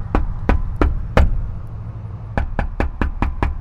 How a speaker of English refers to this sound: But right under the sound hole of the guitar, there was, you know, a regular door. So like any other dope, I knocked.